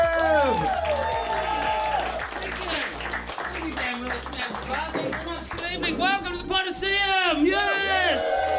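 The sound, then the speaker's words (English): An audience at the filming of the show Live at the Potosium claps and cheers steadily for several seconds, dense loud applause with shrill whoops and shouts rising and falling over it. “So what we need from you guys is, if you would please, put your hands together, start clapping. Add to that some cheering.”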